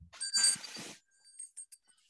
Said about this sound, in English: do you want a last call? Ring that bell, baby.